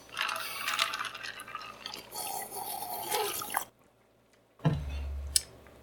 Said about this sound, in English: Ew. I got like 3 good gulps in, bro.